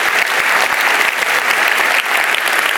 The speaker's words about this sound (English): Yeah, let's give the Lord another round of applause. Can we do that? Yeah.